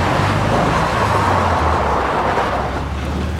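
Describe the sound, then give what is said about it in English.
A loud truck engine roars steadily, a dense rumble of motor and road noise filling the whole stretch as the vehicle is put into gear and pulls away under power, with no voices. “The waitress put the truck into gear and jammed the gas pedal down.”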